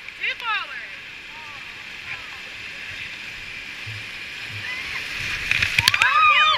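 Steady rushing river water fills the scene as a boat turns around and paddles back upriver into a rapid, with paddle splashes and sloshing building louder near the end. Chirping birds call briefly at the start and again toward the finish.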